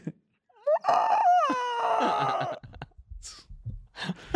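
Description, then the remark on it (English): A person imitates a bird, letting out a loud, squawking bird-like cry, its pitch bending up and down for about two seconds, then a few short breathy vocal bursts follow; it is the sound made on winning a jackpot at a slot machine. “When you hit a slot and you make a bird sound, you'd be like, yeah.”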